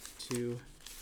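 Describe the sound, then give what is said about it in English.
Five and a half pages of paper notes rustle and crinkle in short, dry bursts, with a brief voiced sound from a person breaking in partway through. “My 5.5 pages of notes. Sorry if it rustles and makes noise.”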